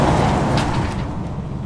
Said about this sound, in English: Now, the next plot, same herbicide timings as last time, but given that we did do that early flowering time, we'll just wait for that big road train going past.